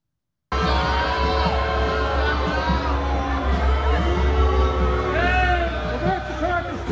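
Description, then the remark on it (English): A crowd booing and jeering continuously at a passing truck carrying a Nikki Haley billboard as it drives past a line for a Trump rally in Richmond, Virginia; many overlapping voices rising into drawn-out boos and shouts, with a steady low rumble like an engine underneath throughout. “being booed while driving past a line for the Trump rally in Richmond, Virginia.”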